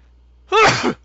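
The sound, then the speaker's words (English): A single sharp sneeze bursts out, loud and abrupt, lasting under half a second with a breathy, noisy release, surrounded by quiet. “I was hoping you would talk because I had a sneeze.”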